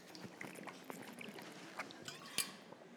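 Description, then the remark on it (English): A speaker takes a water break while teaching: soft, wet gulps and swallows with small mouth clicks and a faint slosh, quiet and irregular, with no talking. “Water break.”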